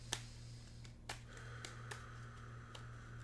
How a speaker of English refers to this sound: Shuffling the cards.